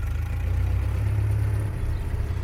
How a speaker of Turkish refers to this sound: Aklım ihtimallerle dolup taşıyordu ki Anna'nın yollattığı çok belli olan şık bir Mercedes-Benz kaldırmaya yanaştı. Şoförle küçük bir kafa selamı paylaştık. Arabaya bindim. Gün doğumuna doğru ilerledik.